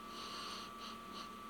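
Someone sniffs at a beer: one long breathy inhale followed by two short, quick sniffs, soft and airy with a faint steady hum underneath and no talking.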